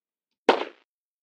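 A single sharp gunshot cracks out against silence, a loud bang that decays quickly with a brief ringing tail. No voices are present.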